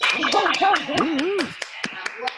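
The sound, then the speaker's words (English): A short burst of steady, sharp hand claps, roughly one every quarter second. A voice talks over the first half, then the last few claps ring out alone and grow sparser. “All right, let's have us a good round of applause and stuff for absolutely no reason.”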